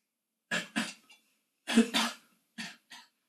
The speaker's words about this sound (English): I'm coughing on my words.